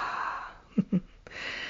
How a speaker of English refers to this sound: So we take a breath.